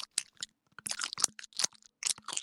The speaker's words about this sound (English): In case you haven't noticed, I've been chewing gum for this entire episode.